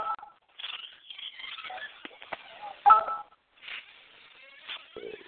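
Telephone dialing tones beep in a short, uneven series over a thin, crackly phone-line hiss, with one louder tone burst near the middle and no clear speech.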